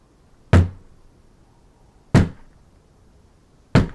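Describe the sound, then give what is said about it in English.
Three slow, heavy knocks on a door, evenly spaced about a second and a half apart, each a loud thud with a brief resonant tail, and quiet in between. “on the door. Who goes to check the door?”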